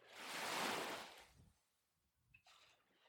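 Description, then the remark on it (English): Gentle ocean waves just over the sand dunes: a soft wave rushes in with a broad hissing wash, swells, then recedes into quiet before a fainter second swell begins, gentle and somewhat distant. “But you can hear the welcoming sound of waves in the distance just over the dunes.”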